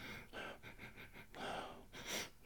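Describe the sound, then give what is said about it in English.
Sniffing of wine from a goblet that looks like a human skull: a quick series of short, rhythmic sniffs followed by two longer, deeper inhales through the nose, with no talking. “But anyway, the wine is in already, so let's have a good sniff.”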